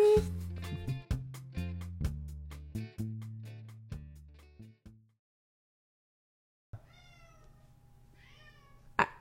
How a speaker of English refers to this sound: Murph. Oh, Murph. You're just meowing Murphy, up a storm. Like, there's nothing new up there, ever. I don't know why. You give him some catnip and he just goes crazy.